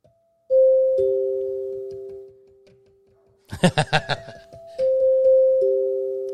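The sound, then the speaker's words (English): Two small bells from a tiny set are struck with a mallet in a falling two-note ding-dong, each tone ringing out clearly. A short burst of laughter follows, then the same two-note pair rings again. “Here, look, I got you your very own road case for your bells and a mallet.”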